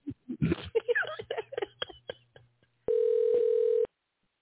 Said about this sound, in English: No voicemail or nothing. Right, that's like 10 rings, ain't it? Well, who counting? That's that Google phone number. That got voicemail, don't it? Oh, wait. Nope, call failed, not answered